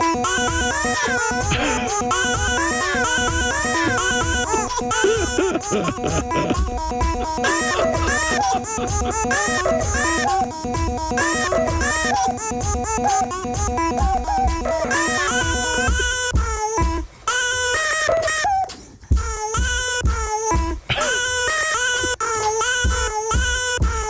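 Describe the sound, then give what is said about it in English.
Baby coos and cries, recorded by the baby's father, chopped into a loud, steady drum beat, with the baby's sneeze serving as the hi-hat, slapping of the floor as the snare and whumping on a couch cushion as the kick drum, briefly dropping out twice near the end. “I recorded my son, he says. Baby making baby noises.”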